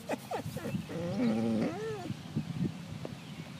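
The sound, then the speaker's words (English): Basil, Chris and Felina Hewitt's dog, vocalizes in a run of whiny, yowling sounds, with a long wavering, rising-and-falling whine in the middle and shorter grumbly yelps around it. “The next fingerprint sound is from Chris and Felina Hewitt's dog, Basil, who identifies as a dog Enneagram type 2.”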